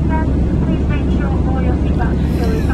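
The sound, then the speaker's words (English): An aeroplane flies past outside the window, a loud, steady low rumble filling the whole moment, with indistinct voices talking over it. “You probably heard actual aeroplanes going outside the window.”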